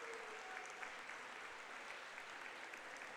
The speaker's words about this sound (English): So with 2:19 to go, the five seniors for Cros-Lex getting a nice round of applause from the Pioneer faithful.